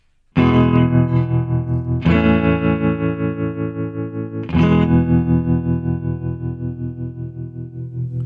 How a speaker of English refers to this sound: I think that's a good tone. It's just built-in vibrato and the some reverb, Stratocaster. Three chords. I'll add a fourth one.